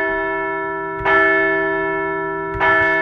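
A large bell, rung to celebrate a couple of Phillies wins, rings twice, about a second and a half apart, each loud strike ringing out with a long sustained hum that carries between the strokes.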